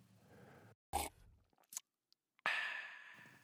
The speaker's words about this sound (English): Ew, how can you chew those things like that? Wash it down with something.